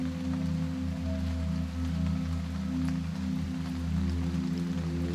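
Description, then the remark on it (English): Steady rain patters continuously over a low, sustained droning hum, with scattered soft drops ticking through the hiss and no voices present. “See the colors, hear the rain, the music, and feel the sensations of being there.”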